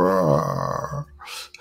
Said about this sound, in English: Sort of a tired lion. Couldn't quite find the energy to roar.